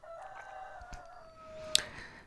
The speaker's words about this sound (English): And my butthead rooster has a lot to say in the background. Sorry about that.